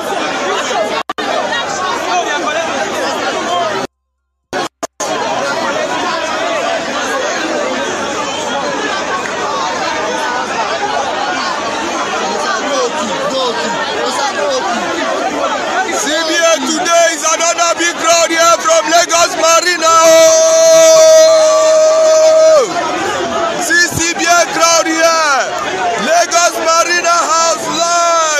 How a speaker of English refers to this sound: People were seen burning tires to block roads, according to AFP, while The Punch tweeted a video of crowds thronging the Central Bank of Nigeria office in Lagos.